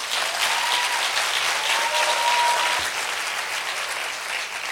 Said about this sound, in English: And sisters, I want you to give these wonderful men a round of applause.